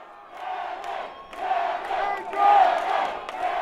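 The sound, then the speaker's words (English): A dense, roaring fight crowd fills the whole stretch, and a man's intense yelling rises above it in strained bursts, swelling loudest near the middle and staying steady until the end; the yelling spectator has a young toddler bouncing on his shoulders. “A man directly behind me is yelling with focused intensity.”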